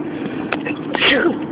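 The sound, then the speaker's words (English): A single sharp sneeze from a person with a clogged nose at the beach bursts out about two-thirds of the way in, loud and breathy over a steady low background hum, preceded by a brief intake of breath. “I knew I was about to sneeze.”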